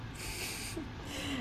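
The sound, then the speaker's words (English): A drawn-out yawn: a breathy, airy exhale carrying a low, wavering voiced tone that slides up briefly near the end. It's quiet, with no talking over it. “Jesus Christ, I hate that I'm yawning.”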